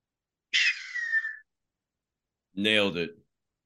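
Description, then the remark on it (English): Someone imitates a peregrine falcon's cry with two shrill vocal screeches: a high, thin shriek that slides downward, then after a pause a shorter, harsher raspy call, both loud. “Eagle Falcon fucking impression. And, It's a peregrine falcon for anybody who wants to know.”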